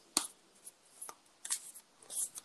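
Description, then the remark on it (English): A deck of oracle cards being shuffled for an oracle card reading: several short, crisp papery riffles and flicks at uneven intervals, fairly quiet, with no one talking. “Hold on, let me just shuffle a little bit here.”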